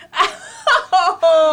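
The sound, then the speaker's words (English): A person imitates guinea pig squeaks with four short, high-pitched vocal bursts, each a strained, tonal wheek with a slight wavering quality, separated by brief pauses. “All right, now do the guinea pig impression.”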